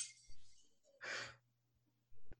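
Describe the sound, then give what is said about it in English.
A plate breaking: one brief, hissing crash of noise in the middle, fairly quiet, with a faint high rustle before it and a sharp click near the end. No one speaks. “It's a breaking glass. It's a plate, but yeah, you got it.”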